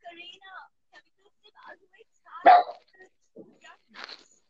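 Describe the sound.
A dog lets out a sharp, loud bark, followed a moment later by a second, softer bark, with faint, indistinct voices murmuring around them.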